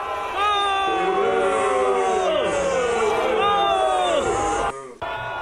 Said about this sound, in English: Here he is in Houston getting booed at the Astros World Series parade.